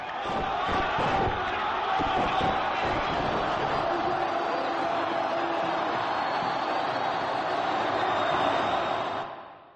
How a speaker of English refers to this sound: Listen to that crowd. That's what they've been waiting for. Hosni Mubarak has gone.